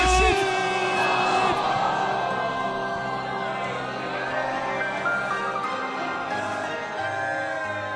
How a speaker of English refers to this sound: The crowd is not enjoying that one. That came out of nowhere.